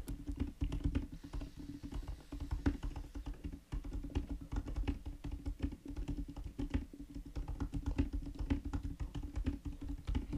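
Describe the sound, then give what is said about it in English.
Rapid, continuous typing on a computer keyboard into a website, a dense patter of key clicks running the whole time at a steady, busy pace, moderately quiet, with no one speaking. “Don't try to space it. Just keep typing.”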